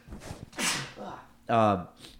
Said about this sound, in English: Yeah, I think, sorry, I'm having like a sneeze attack.